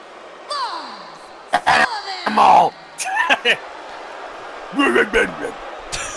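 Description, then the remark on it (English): A single loud, sharp sneeze bursts out in the middle, surrounded by bits of casual voices talking and exclaiming. “Bless you.”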